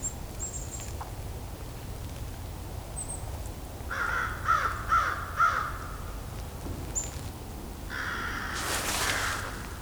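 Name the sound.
crows cawing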